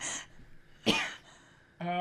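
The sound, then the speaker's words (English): A single sharp, fairly loud cough bursts out near the middle, between quieter stretches, with a voice starting up right at the end. “He coughs.”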